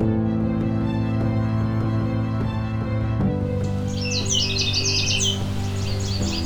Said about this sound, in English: So there seem to be two Canada warblers here. They may be fighting over territory.